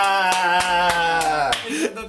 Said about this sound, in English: Yes, we need more ass slapping on this podcast.